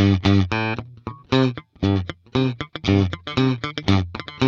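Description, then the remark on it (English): A bright, twangy country guitar is plucked in quick, bouncy bursts of notes and short chords, loud and sharp-edged, with brief gaps between phrases and no voices. “and you're producing that twang by the way you're plucking the guitar”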